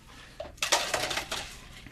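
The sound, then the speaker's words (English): A drink is poured over ice into crystal glasses, served on the rocks, making a bright, rattling clatter in a few quick bursts that sounds more like plastic cups than glass, with no talking. “Sound of it, it sounds like we're pouring into plastic Solo cups.”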